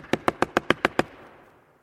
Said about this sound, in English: Would you quit knocking?